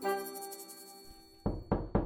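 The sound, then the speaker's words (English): Three firm knocks on a door come in quick succession, loud, right after a sustained musical tone fades out. “Oh, hang on a second. That must be the doctor next door now.”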